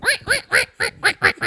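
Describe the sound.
A person imitates a duck, letting out seven quick, nasal quacks in a steady rhythm, loud, with no other talking.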